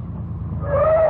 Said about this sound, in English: I remember my relief when I heard the car coming.